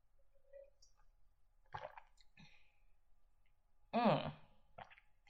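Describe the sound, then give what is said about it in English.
Quiet sips of Chardonnay wine being tasted: a few short wet slurps and mouth sounds spaced over several seconds, with one louder, longer slurp toward the end and near-silence between. “Well, before I get any more ahead of myself, I'm going to cheers you and taste this wine.”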